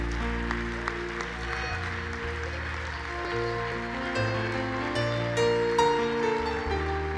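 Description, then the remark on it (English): An audience in church on Resurrection Sunday claps steadily for several seconds, a dense wash of many hands, mixed with sustained keyboard or organ chords playing underneath at a moderate, even level. “One more time, I think it's appropriate if we would just clap our hands like we really mean it.”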